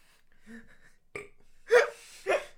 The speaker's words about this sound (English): I burped in my hand, all right? He did do that. He ate the burp.